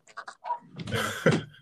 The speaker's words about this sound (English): What's that, a little pup in the background?